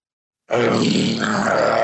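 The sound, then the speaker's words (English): After half a second of silence, John McAfee lets out a loud, sustained roar in reply, a single rough, growling bellow held steady for well over a second, forceful. “John, are you ready to roar?”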